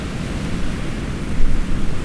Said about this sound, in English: More garbled electronic noises.